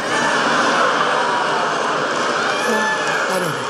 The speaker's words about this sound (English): Audible groans there from the crowd.